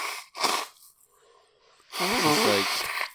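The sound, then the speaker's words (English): Two short, harsh coughing bursts, a brief quieter breathy pause, then a loud, drawn-out honking nose blow with a wavering, voiced edge, with no talking. “I need like a second here just to blow my nose and cough a bit and stuff.”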